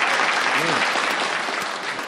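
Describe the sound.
Sustained applause from an audience, a dense wash of many hands clapping at an even, steady level for a couple of seconds, with faint voices mixed in beneath it.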